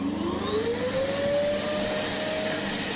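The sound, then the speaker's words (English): A vacuum cleaner sound effect played as a sound drop: the motor whirs loudly and steadily, its high whine climbing in pitch as it spins up over a dense rush of airflow noise. No voices are heard. “And Bolton wants to know where the vacuum sound drop is.”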